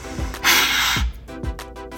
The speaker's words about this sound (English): Wait, does it record your breathing? We'll try and see.